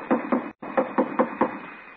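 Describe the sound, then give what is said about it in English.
Someone raps on the stage door of a boarded-up former theater, reached from an alley: two quick knocks, a brief pause, then four more evenly spaced knocks, fairly loud, with a muffled, slightly hollow tone and no voices. “So I just ankled around to the alley and tried the stage door.”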